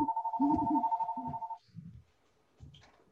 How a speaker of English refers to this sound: okay, that's my house phone. Hold on. Right. Let me kill that house phone. Hold on.